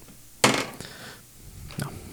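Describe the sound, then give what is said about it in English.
Dice rolled to hit in a tabletop game clatter across a wooden tabletop: a sharp, loud burst of rattling that quickly settles, a single click, then one softer knock after a short pause. No one speaks. “You rolled the wrong dice.”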